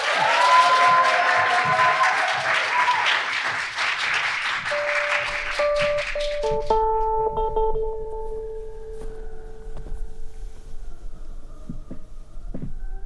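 An audience at a live preview of The Tower claps loudly and steadily for about six seconds, the applause thinning out as soft, sustained musical tones rise and linger into a quieter, humming stretch.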